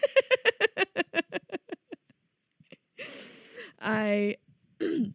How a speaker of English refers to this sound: I'm sorry I keep clearing my throat, but I was smoking weed earlier.